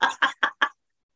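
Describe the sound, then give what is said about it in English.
Four quick squawking bird calls in a rapid, evenly spaced burst, each shorter than the last, then silence. “Double birds on that one, folks.”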